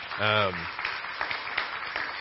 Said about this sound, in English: We missed the band. If y'all give the band a round of applause.